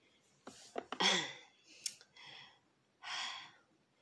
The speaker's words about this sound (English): Excuse me, quick water break. I was thirsty.